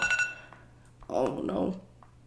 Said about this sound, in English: Sorry, alarm's going off.